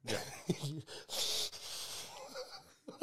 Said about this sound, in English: It was my breathing. That's it. Is it my breathing? Yeah, we can hear you breathing. Fuck, it's so bad. Sorry, guys, I'm sorry. Just my finished a 5K run.